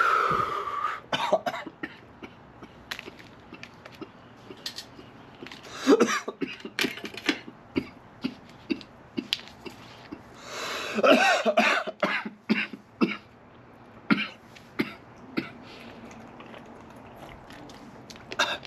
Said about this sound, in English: A lot of people always ask me, why do you cough so much? Do you know how deep I take this shit?